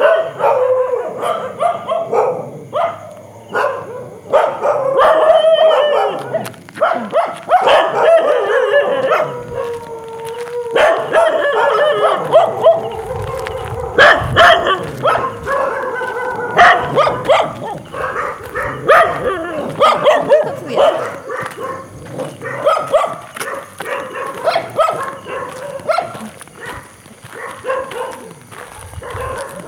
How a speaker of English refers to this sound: followed by the sounds of the infamous Kampot dogs.